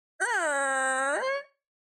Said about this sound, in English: And you kind of hear the gate.